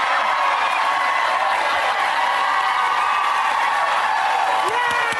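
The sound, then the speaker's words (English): A large crowd roars and cheers without pause, a dense, loud wash of many voices holding steady from start to finish, with scattered claps mixed in. “And it goes massive and people freak out.”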